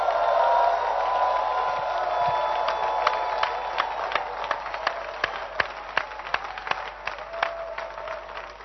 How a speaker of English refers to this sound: I want us to rise to our feet and with a louder hand clap, celebrate our prophet, Bishop Doug Ewart Mills.